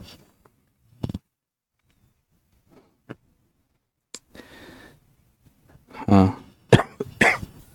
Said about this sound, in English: Excuse me, I keep coughing.